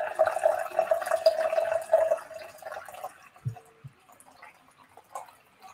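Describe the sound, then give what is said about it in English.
A drink is poured steadily into a glass for about three seconds with a rising, ringing tone, followed by a couple of soft clinks and quiet handling sounds. “Nobody once told you to stop talking while I pour up my drink.”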